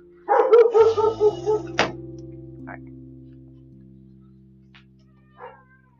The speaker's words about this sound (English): It's like the neighbor's dog.